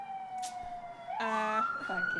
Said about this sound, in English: Shout out to the siren.